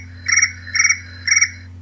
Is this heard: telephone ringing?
no